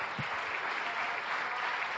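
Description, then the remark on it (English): Steady, dense applause from an audience giving the Lord a hand, a continuous crackle of many hands clapping at an even level throughout, with no voices standing out. “Well, let's give the Lord a good hand here today.”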